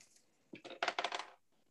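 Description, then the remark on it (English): Dice clatter and tumble across a hard dice tray in a quick burst of sharp, rattling clicks that settle after about a second, clear, with no voices. “Stay in the dice tray, please.”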